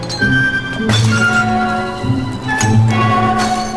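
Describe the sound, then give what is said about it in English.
Glass pop bottles clink together several times with bright ringing tones as someone tries to open them, and there are a few sharp cracking hits as the glass breaks. The sounds are loud, with no talking. “Marty's befogged brain hit on a clever way to open pop bottles”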